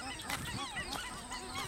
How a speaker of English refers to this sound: At the moment, tiny Lake Emily is shrouded in low mist, ethereal and floating just above her. Shorebirds of all kinds, ryebill, banded dotterel, black-fronted tern, as well as ducks and swans, honk and hoot in the fog.